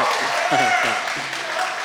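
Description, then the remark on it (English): An audience at a gathering of a faith community claps steadily throughout, a dense wash of applause at even loudness, with a voice or two heard faintly over the clapping. “You'll never be clapped for ever again, just letting you know.”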